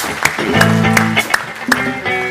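An audience applauding the Lord in thanks: a scattering of sharp, loud claps at an uneven pace, with sustained tonal voices or music humming underneath throughout.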